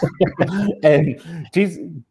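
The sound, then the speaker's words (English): A short run of harsh coughs and throat-clearing sputters from a person choking on water, several choppy bursts in a row followed by one last rough hack, with no words spoken. “That wasn't a loaded cough, by the way. I was choking on my water.”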